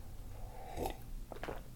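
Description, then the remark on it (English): A quiet slurping sip followed by a couple of soft mouth and swallowing sounds, with no talking, as someone drinks tea. “I'm going to sip my tea real quick.”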